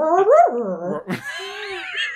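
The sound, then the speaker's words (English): A person acting as a DM mimics a wolf: a throaty, wavering growl-whine rises and falls, then after a sharp breathy burst turns into a thin, drawn-out high whimper. “I do a lot of animal noises.”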